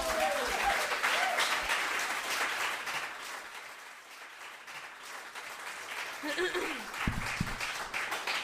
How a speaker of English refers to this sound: Thank you for clapping at me.